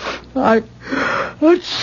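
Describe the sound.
Two sneezes about a second apart from a person catching a cold, each a sharp voiced burst, with breathy, hissing intakes and exhales between them.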